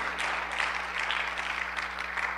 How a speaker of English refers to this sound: Have you ever just needed a mama hug? If you have, give the Lord a hand clap today. Amen.